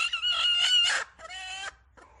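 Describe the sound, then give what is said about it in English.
A broody hen lets out a harsh, drawn-out growling call in two strained bursts, followed by a soft, brief cluck, with no talking over it. “And they do that quiet little cluck. And their growl. There's the growl.”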